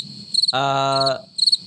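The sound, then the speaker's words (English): Crickets chirp in a steady high trill with quick pulsing bursts at the start and end, broken in the middle by a loud, low droning buzz that briefly dominates. “Let's bring the cricket back down.”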